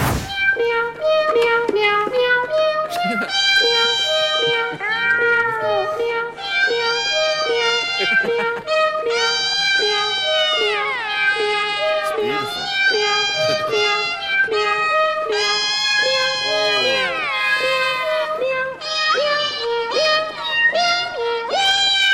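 A melody played entirely with sampled cat meows on a cat-based keyboard, a reworking of a song by an artist, pitched notes following one another in a steady musical rhythm, loud and continuous with layered harmonies and no talking.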